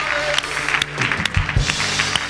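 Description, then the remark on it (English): A crowd gives the Lord a hand clap of praise in a dense, sustained burst of applause, many hands at once with a few sharper claps standing out, while low murmuring voices sit underneath. “Would you give the Lord another hand clap of praise?”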